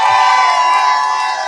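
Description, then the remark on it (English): A large crowd at the CPAC convention cheers and shouts loudly, a dense, sustained roar of many voices filling the space without pause, fading only slightly toward the end. “This crowd is so great.”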